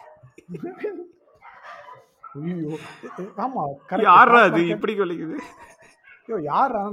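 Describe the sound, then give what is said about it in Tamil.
A dog barks and yips in a string of short, excited bursts, loud, with a louder cluster in the middle and another burst at the end. “Stock மார்க்கெட்னு சொன்னேன், நாய் குலைக்குது.”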